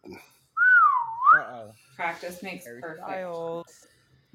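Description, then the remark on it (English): A single slide whistle tone swoops down and back up for under a second, loud, then a person talks briefly. “Don't make me get that slide whistle out.”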